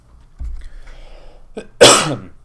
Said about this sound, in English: Sorry, I'm still hoarse and coughing a little bit.